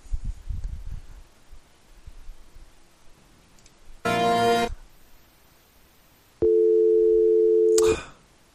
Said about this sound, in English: Oh, that's just the dial tone.